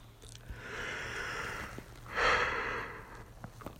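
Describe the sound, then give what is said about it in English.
A breathy yawn: a long drawn inhale followed by a brief, louder voiced exhale, heard alone at moderate volume with no talking. “Yawning.”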